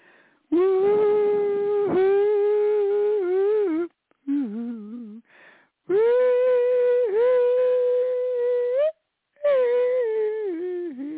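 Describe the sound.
A man's voice sings a drawn-out, yodel-like cattle call, long sustained wavering notes with pitch breaks and short pauses between phrases, loud and unaccompanied.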